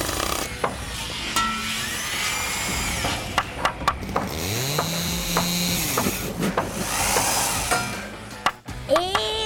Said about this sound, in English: I need you to take this canvas and sew it into a sphere for the hot air balloon attachment.